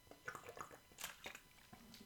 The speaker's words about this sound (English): Hold on, let me just have a sip here.